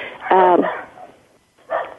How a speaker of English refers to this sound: There's a man in my house, a stranger, and that's why my dogs are going so crazy. I'm so sorry.